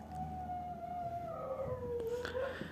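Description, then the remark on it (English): A neighbor's dog, set off by hearing a person talking, howls in one long, drawn-out cry that slowly slides downward in pitch, sounding mournful, with no one talking over it. “My neighbor's dog can hear me talking, and then he starts crying.”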